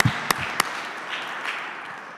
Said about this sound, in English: Put your hands together for the supreme bean pie staff. Let us recognize them.